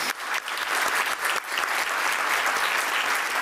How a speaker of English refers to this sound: Thank you so much for that team. I think they're here today. All right, round of applause for Sewer District.